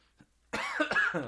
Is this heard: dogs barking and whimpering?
no